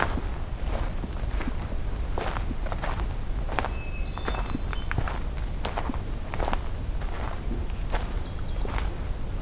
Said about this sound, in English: So we have a hermit thrush singing here.